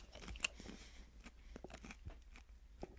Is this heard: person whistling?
no